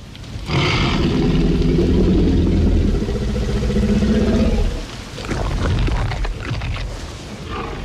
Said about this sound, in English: The menacing growl of a hungry T-Rex ushered in the dark side of gene tinkering in the film Jurassic Park.